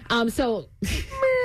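A male cat meows, two quick drawn-out calls in a row, then a short pause before another rougher, sustained meow.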